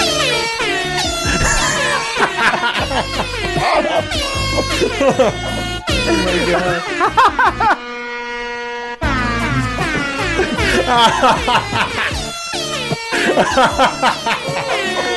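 A pop song whose lead melody is played on a loud, blaring air horn, honking through the phrases over the backing track, with one brief stretch of sustained horn tone alone.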